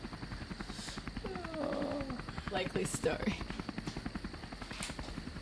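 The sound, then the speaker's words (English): A helicopter hovers overhead, its rapid rotor chop thudding in a steady, loud rhythm throughout, while a man briefly speaks over the noise. “So, a rope drops down from a helicopter hovering above another military operative slides down a rope.”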